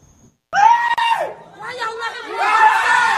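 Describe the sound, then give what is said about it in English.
Desperate screams for help ring out loud, one frantic voice shrieking almost without pause for about three seconds, with other panicked voices overlapping toward the end, moments after an R&B singer is shot in an attempted robbery at a bowling alley in Davie, South Florida. “Desperate screams for help moments after South Florida R&B singer … is shot”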